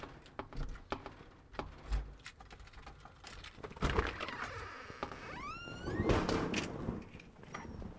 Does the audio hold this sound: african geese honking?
no